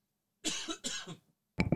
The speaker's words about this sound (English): Wow. Excuse me for the cough.